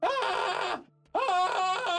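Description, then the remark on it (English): A person acts out two loud, strained cries of pain in quick succession, each one harsh and drawn out, with a brief silent gap between them, portraying a man shot in the legs going down on his knees. “And nudge his arm a bit, so the shot goes a little off kilter, hits him in the legs, and he goes down on his knees, screaming.”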